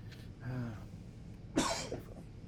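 A single sharp cough bursts out after a brief murmur of voice, followed by a softer trailing rasp against a quiet background.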